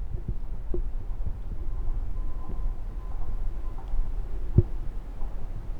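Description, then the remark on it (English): Soft, muffled low thumps pulse irregularly beneath a steady low rumble and handling noise: the speaker's own heartbeat picked up through a recorder gripped tightly in the hand. No one speaks. “I'm gripping my recorder so hard you can hear my pulse.”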